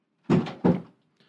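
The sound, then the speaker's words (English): A door is shut with two quick, solid knocks in close succession, like the slab meeting the frame and then the latch catching, followed by a faint high hum. “Why is my door open?”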